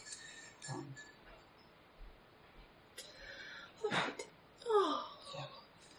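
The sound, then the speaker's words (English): A person lets out a drawn-out, breathy yawn that slides downward in pitch, fairly loud, after a few soft murmured vocal sounds. “Yeah, that was a realistic yawn.”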